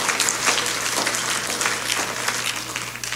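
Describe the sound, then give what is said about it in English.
A crowd claps steadily, many hands producing a dense, continuous patter of crisp slaps at a fairly loud, even level, with no talking over it. “Why don't we just clap our hands and believe that right now?”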